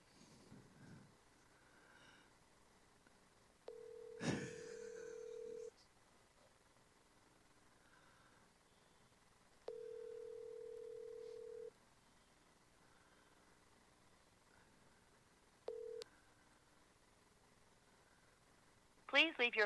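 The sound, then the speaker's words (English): Phone ringback tone on an outgoing call to the company Sentinel Electric and Lighting: two steady two-second rings spaced several seconds apart, then a third cut short almost immediately, with faint line hiss and clicks in between. “Now see, it's ringing for him.”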